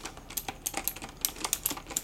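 Rapid, irregular typing on a computer keyboard at a bed and breakfast check-in desk while room keys are prepared: a steady patter of sharp plastic clicks, with no voices over it.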